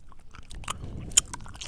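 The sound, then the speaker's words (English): Chewing of a soft, sticky Starburst fruit chew candy: quiet wet smacks and mouth sounds in an irregular rhythm, with one sharp click partway through and no talking. “So try your Starburst and then have a sip of your Barefoot Pinot Grigio.”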